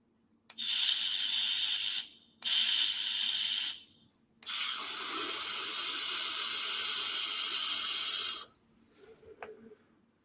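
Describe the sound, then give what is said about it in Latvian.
A vape coil fires and spits in three loud hissing bursts: two short puffs, then a longer steady sizzle lasting about four seconds, followed by quiet. No one speaks. “Teikšu tā, viņš mazliet spļaudās man tagad.”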